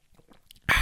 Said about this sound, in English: But first of all, I really need a sip of this coffee, you know, in my great Prodigal mug.